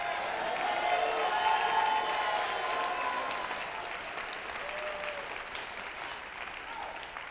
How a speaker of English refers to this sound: Somebody clap and give God the glory. Come on, clap, give the Lord praise.